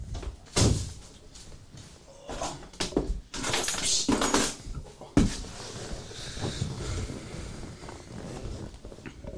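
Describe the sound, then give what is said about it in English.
A door is pushed shut with a firm thud midway through, after an earlier bump and some shuffling movement; no one speaks, and faint background noise follows. “I didn't even close the door.”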